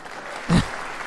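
In a played recording, after an answer about opening up new pork markets, a sharp clap stands out against a steady hiss of scattered clapping, briefly louder in the middle before settling back to a soft, continuous patter of applause.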